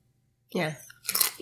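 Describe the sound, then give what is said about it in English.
Crunching of crisp seaweed tempura chips being bitten and chewed: a short murmur, then a sharp, bright crackle of crunches. “And he's trying one more. It's not bad. Yeah, they're kind of like chips.”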